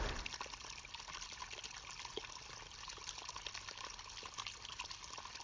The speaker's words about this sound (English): You come down after a second and then you see the well, which is a strange little hole coming out from under the trees. You can't see its source, it's dark in there. There's a good amount of water flowing through.